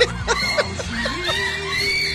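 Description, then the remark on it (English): A girl screams in shrill, high-pitched bursts that stretch into a rising wail, mixed with laugh-like yelps over faint background noise. “That's the other girl screaming.”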